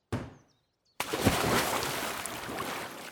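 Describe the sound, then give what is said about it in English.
A sharp burst of splashing as a thrown apple drops into water, fading within half a second, then after a short silence a steady rush of churning, sloshing water fills the rest. “Yippee, what a splash.”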